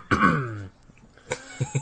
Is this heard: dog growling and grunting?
no